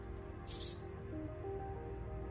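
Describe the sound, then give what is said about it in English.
A single brief, high-pitched bird call rings out near the start inside a quiet room of a house as the panicked bird flies out down a dark corridor, followed by a low, steady hum with faint tonal drones and no voices. “The bird panics and soars out above me, down the dark corridor to another part of the house.”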